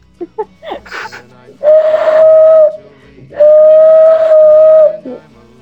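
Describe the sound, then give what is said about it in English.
Two long, breathy whistles blown with the hands, loud, each holding a steady hooting tone like a train whistle, after a few brief soft sounds at the start. “I can whistle with my hands.”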